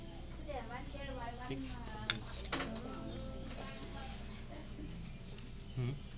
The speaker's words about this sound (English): I'm cooking something back there, and it sounds like birds going crazy. But I think it's just oil screaming, like they're deep frying something.